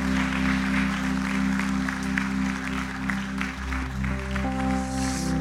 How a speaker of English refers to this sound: why don't we just give a massive round of applause as Mark comes to the platform today